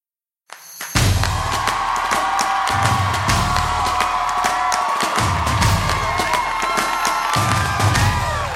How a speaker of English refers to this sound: Thank you. Clap it up for yourself.